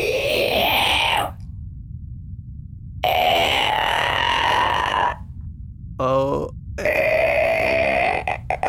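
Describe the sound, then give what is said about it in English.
A cat coughing up a fur ball: three loud, strained retching heaves separated by pauses, each a rough, rising, throaty gag, with a brief choppy hack before the last one. “Then you walk to the corner where you can hear that sound, and you can see that it's the cat. It's got a fur ball,”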